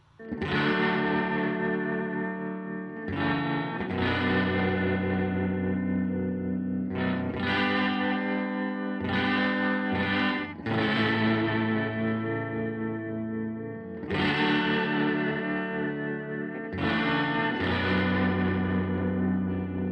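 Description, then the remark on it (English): A vintage 1970s Vox tube amp with built-in reverb and tremolo rings out loudly as full sustained electric guitar chords shift every few seconds, with no one talking. “I always love an opportunity to make my vintage 70s Vox tube amp with its built-in reverb and tremolo sound like itself, like what it is.”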